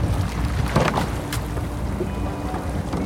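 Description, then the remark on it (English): A rowing boat moves through water with a steady wash and a few soft splashes of oars dipping, against a constant low rumble of wind and water noise outdoors. “It's the only time in my waking hours that I can forget that I'm blind is when I'm in a boat rowing, because it's all about the feel, the sound.”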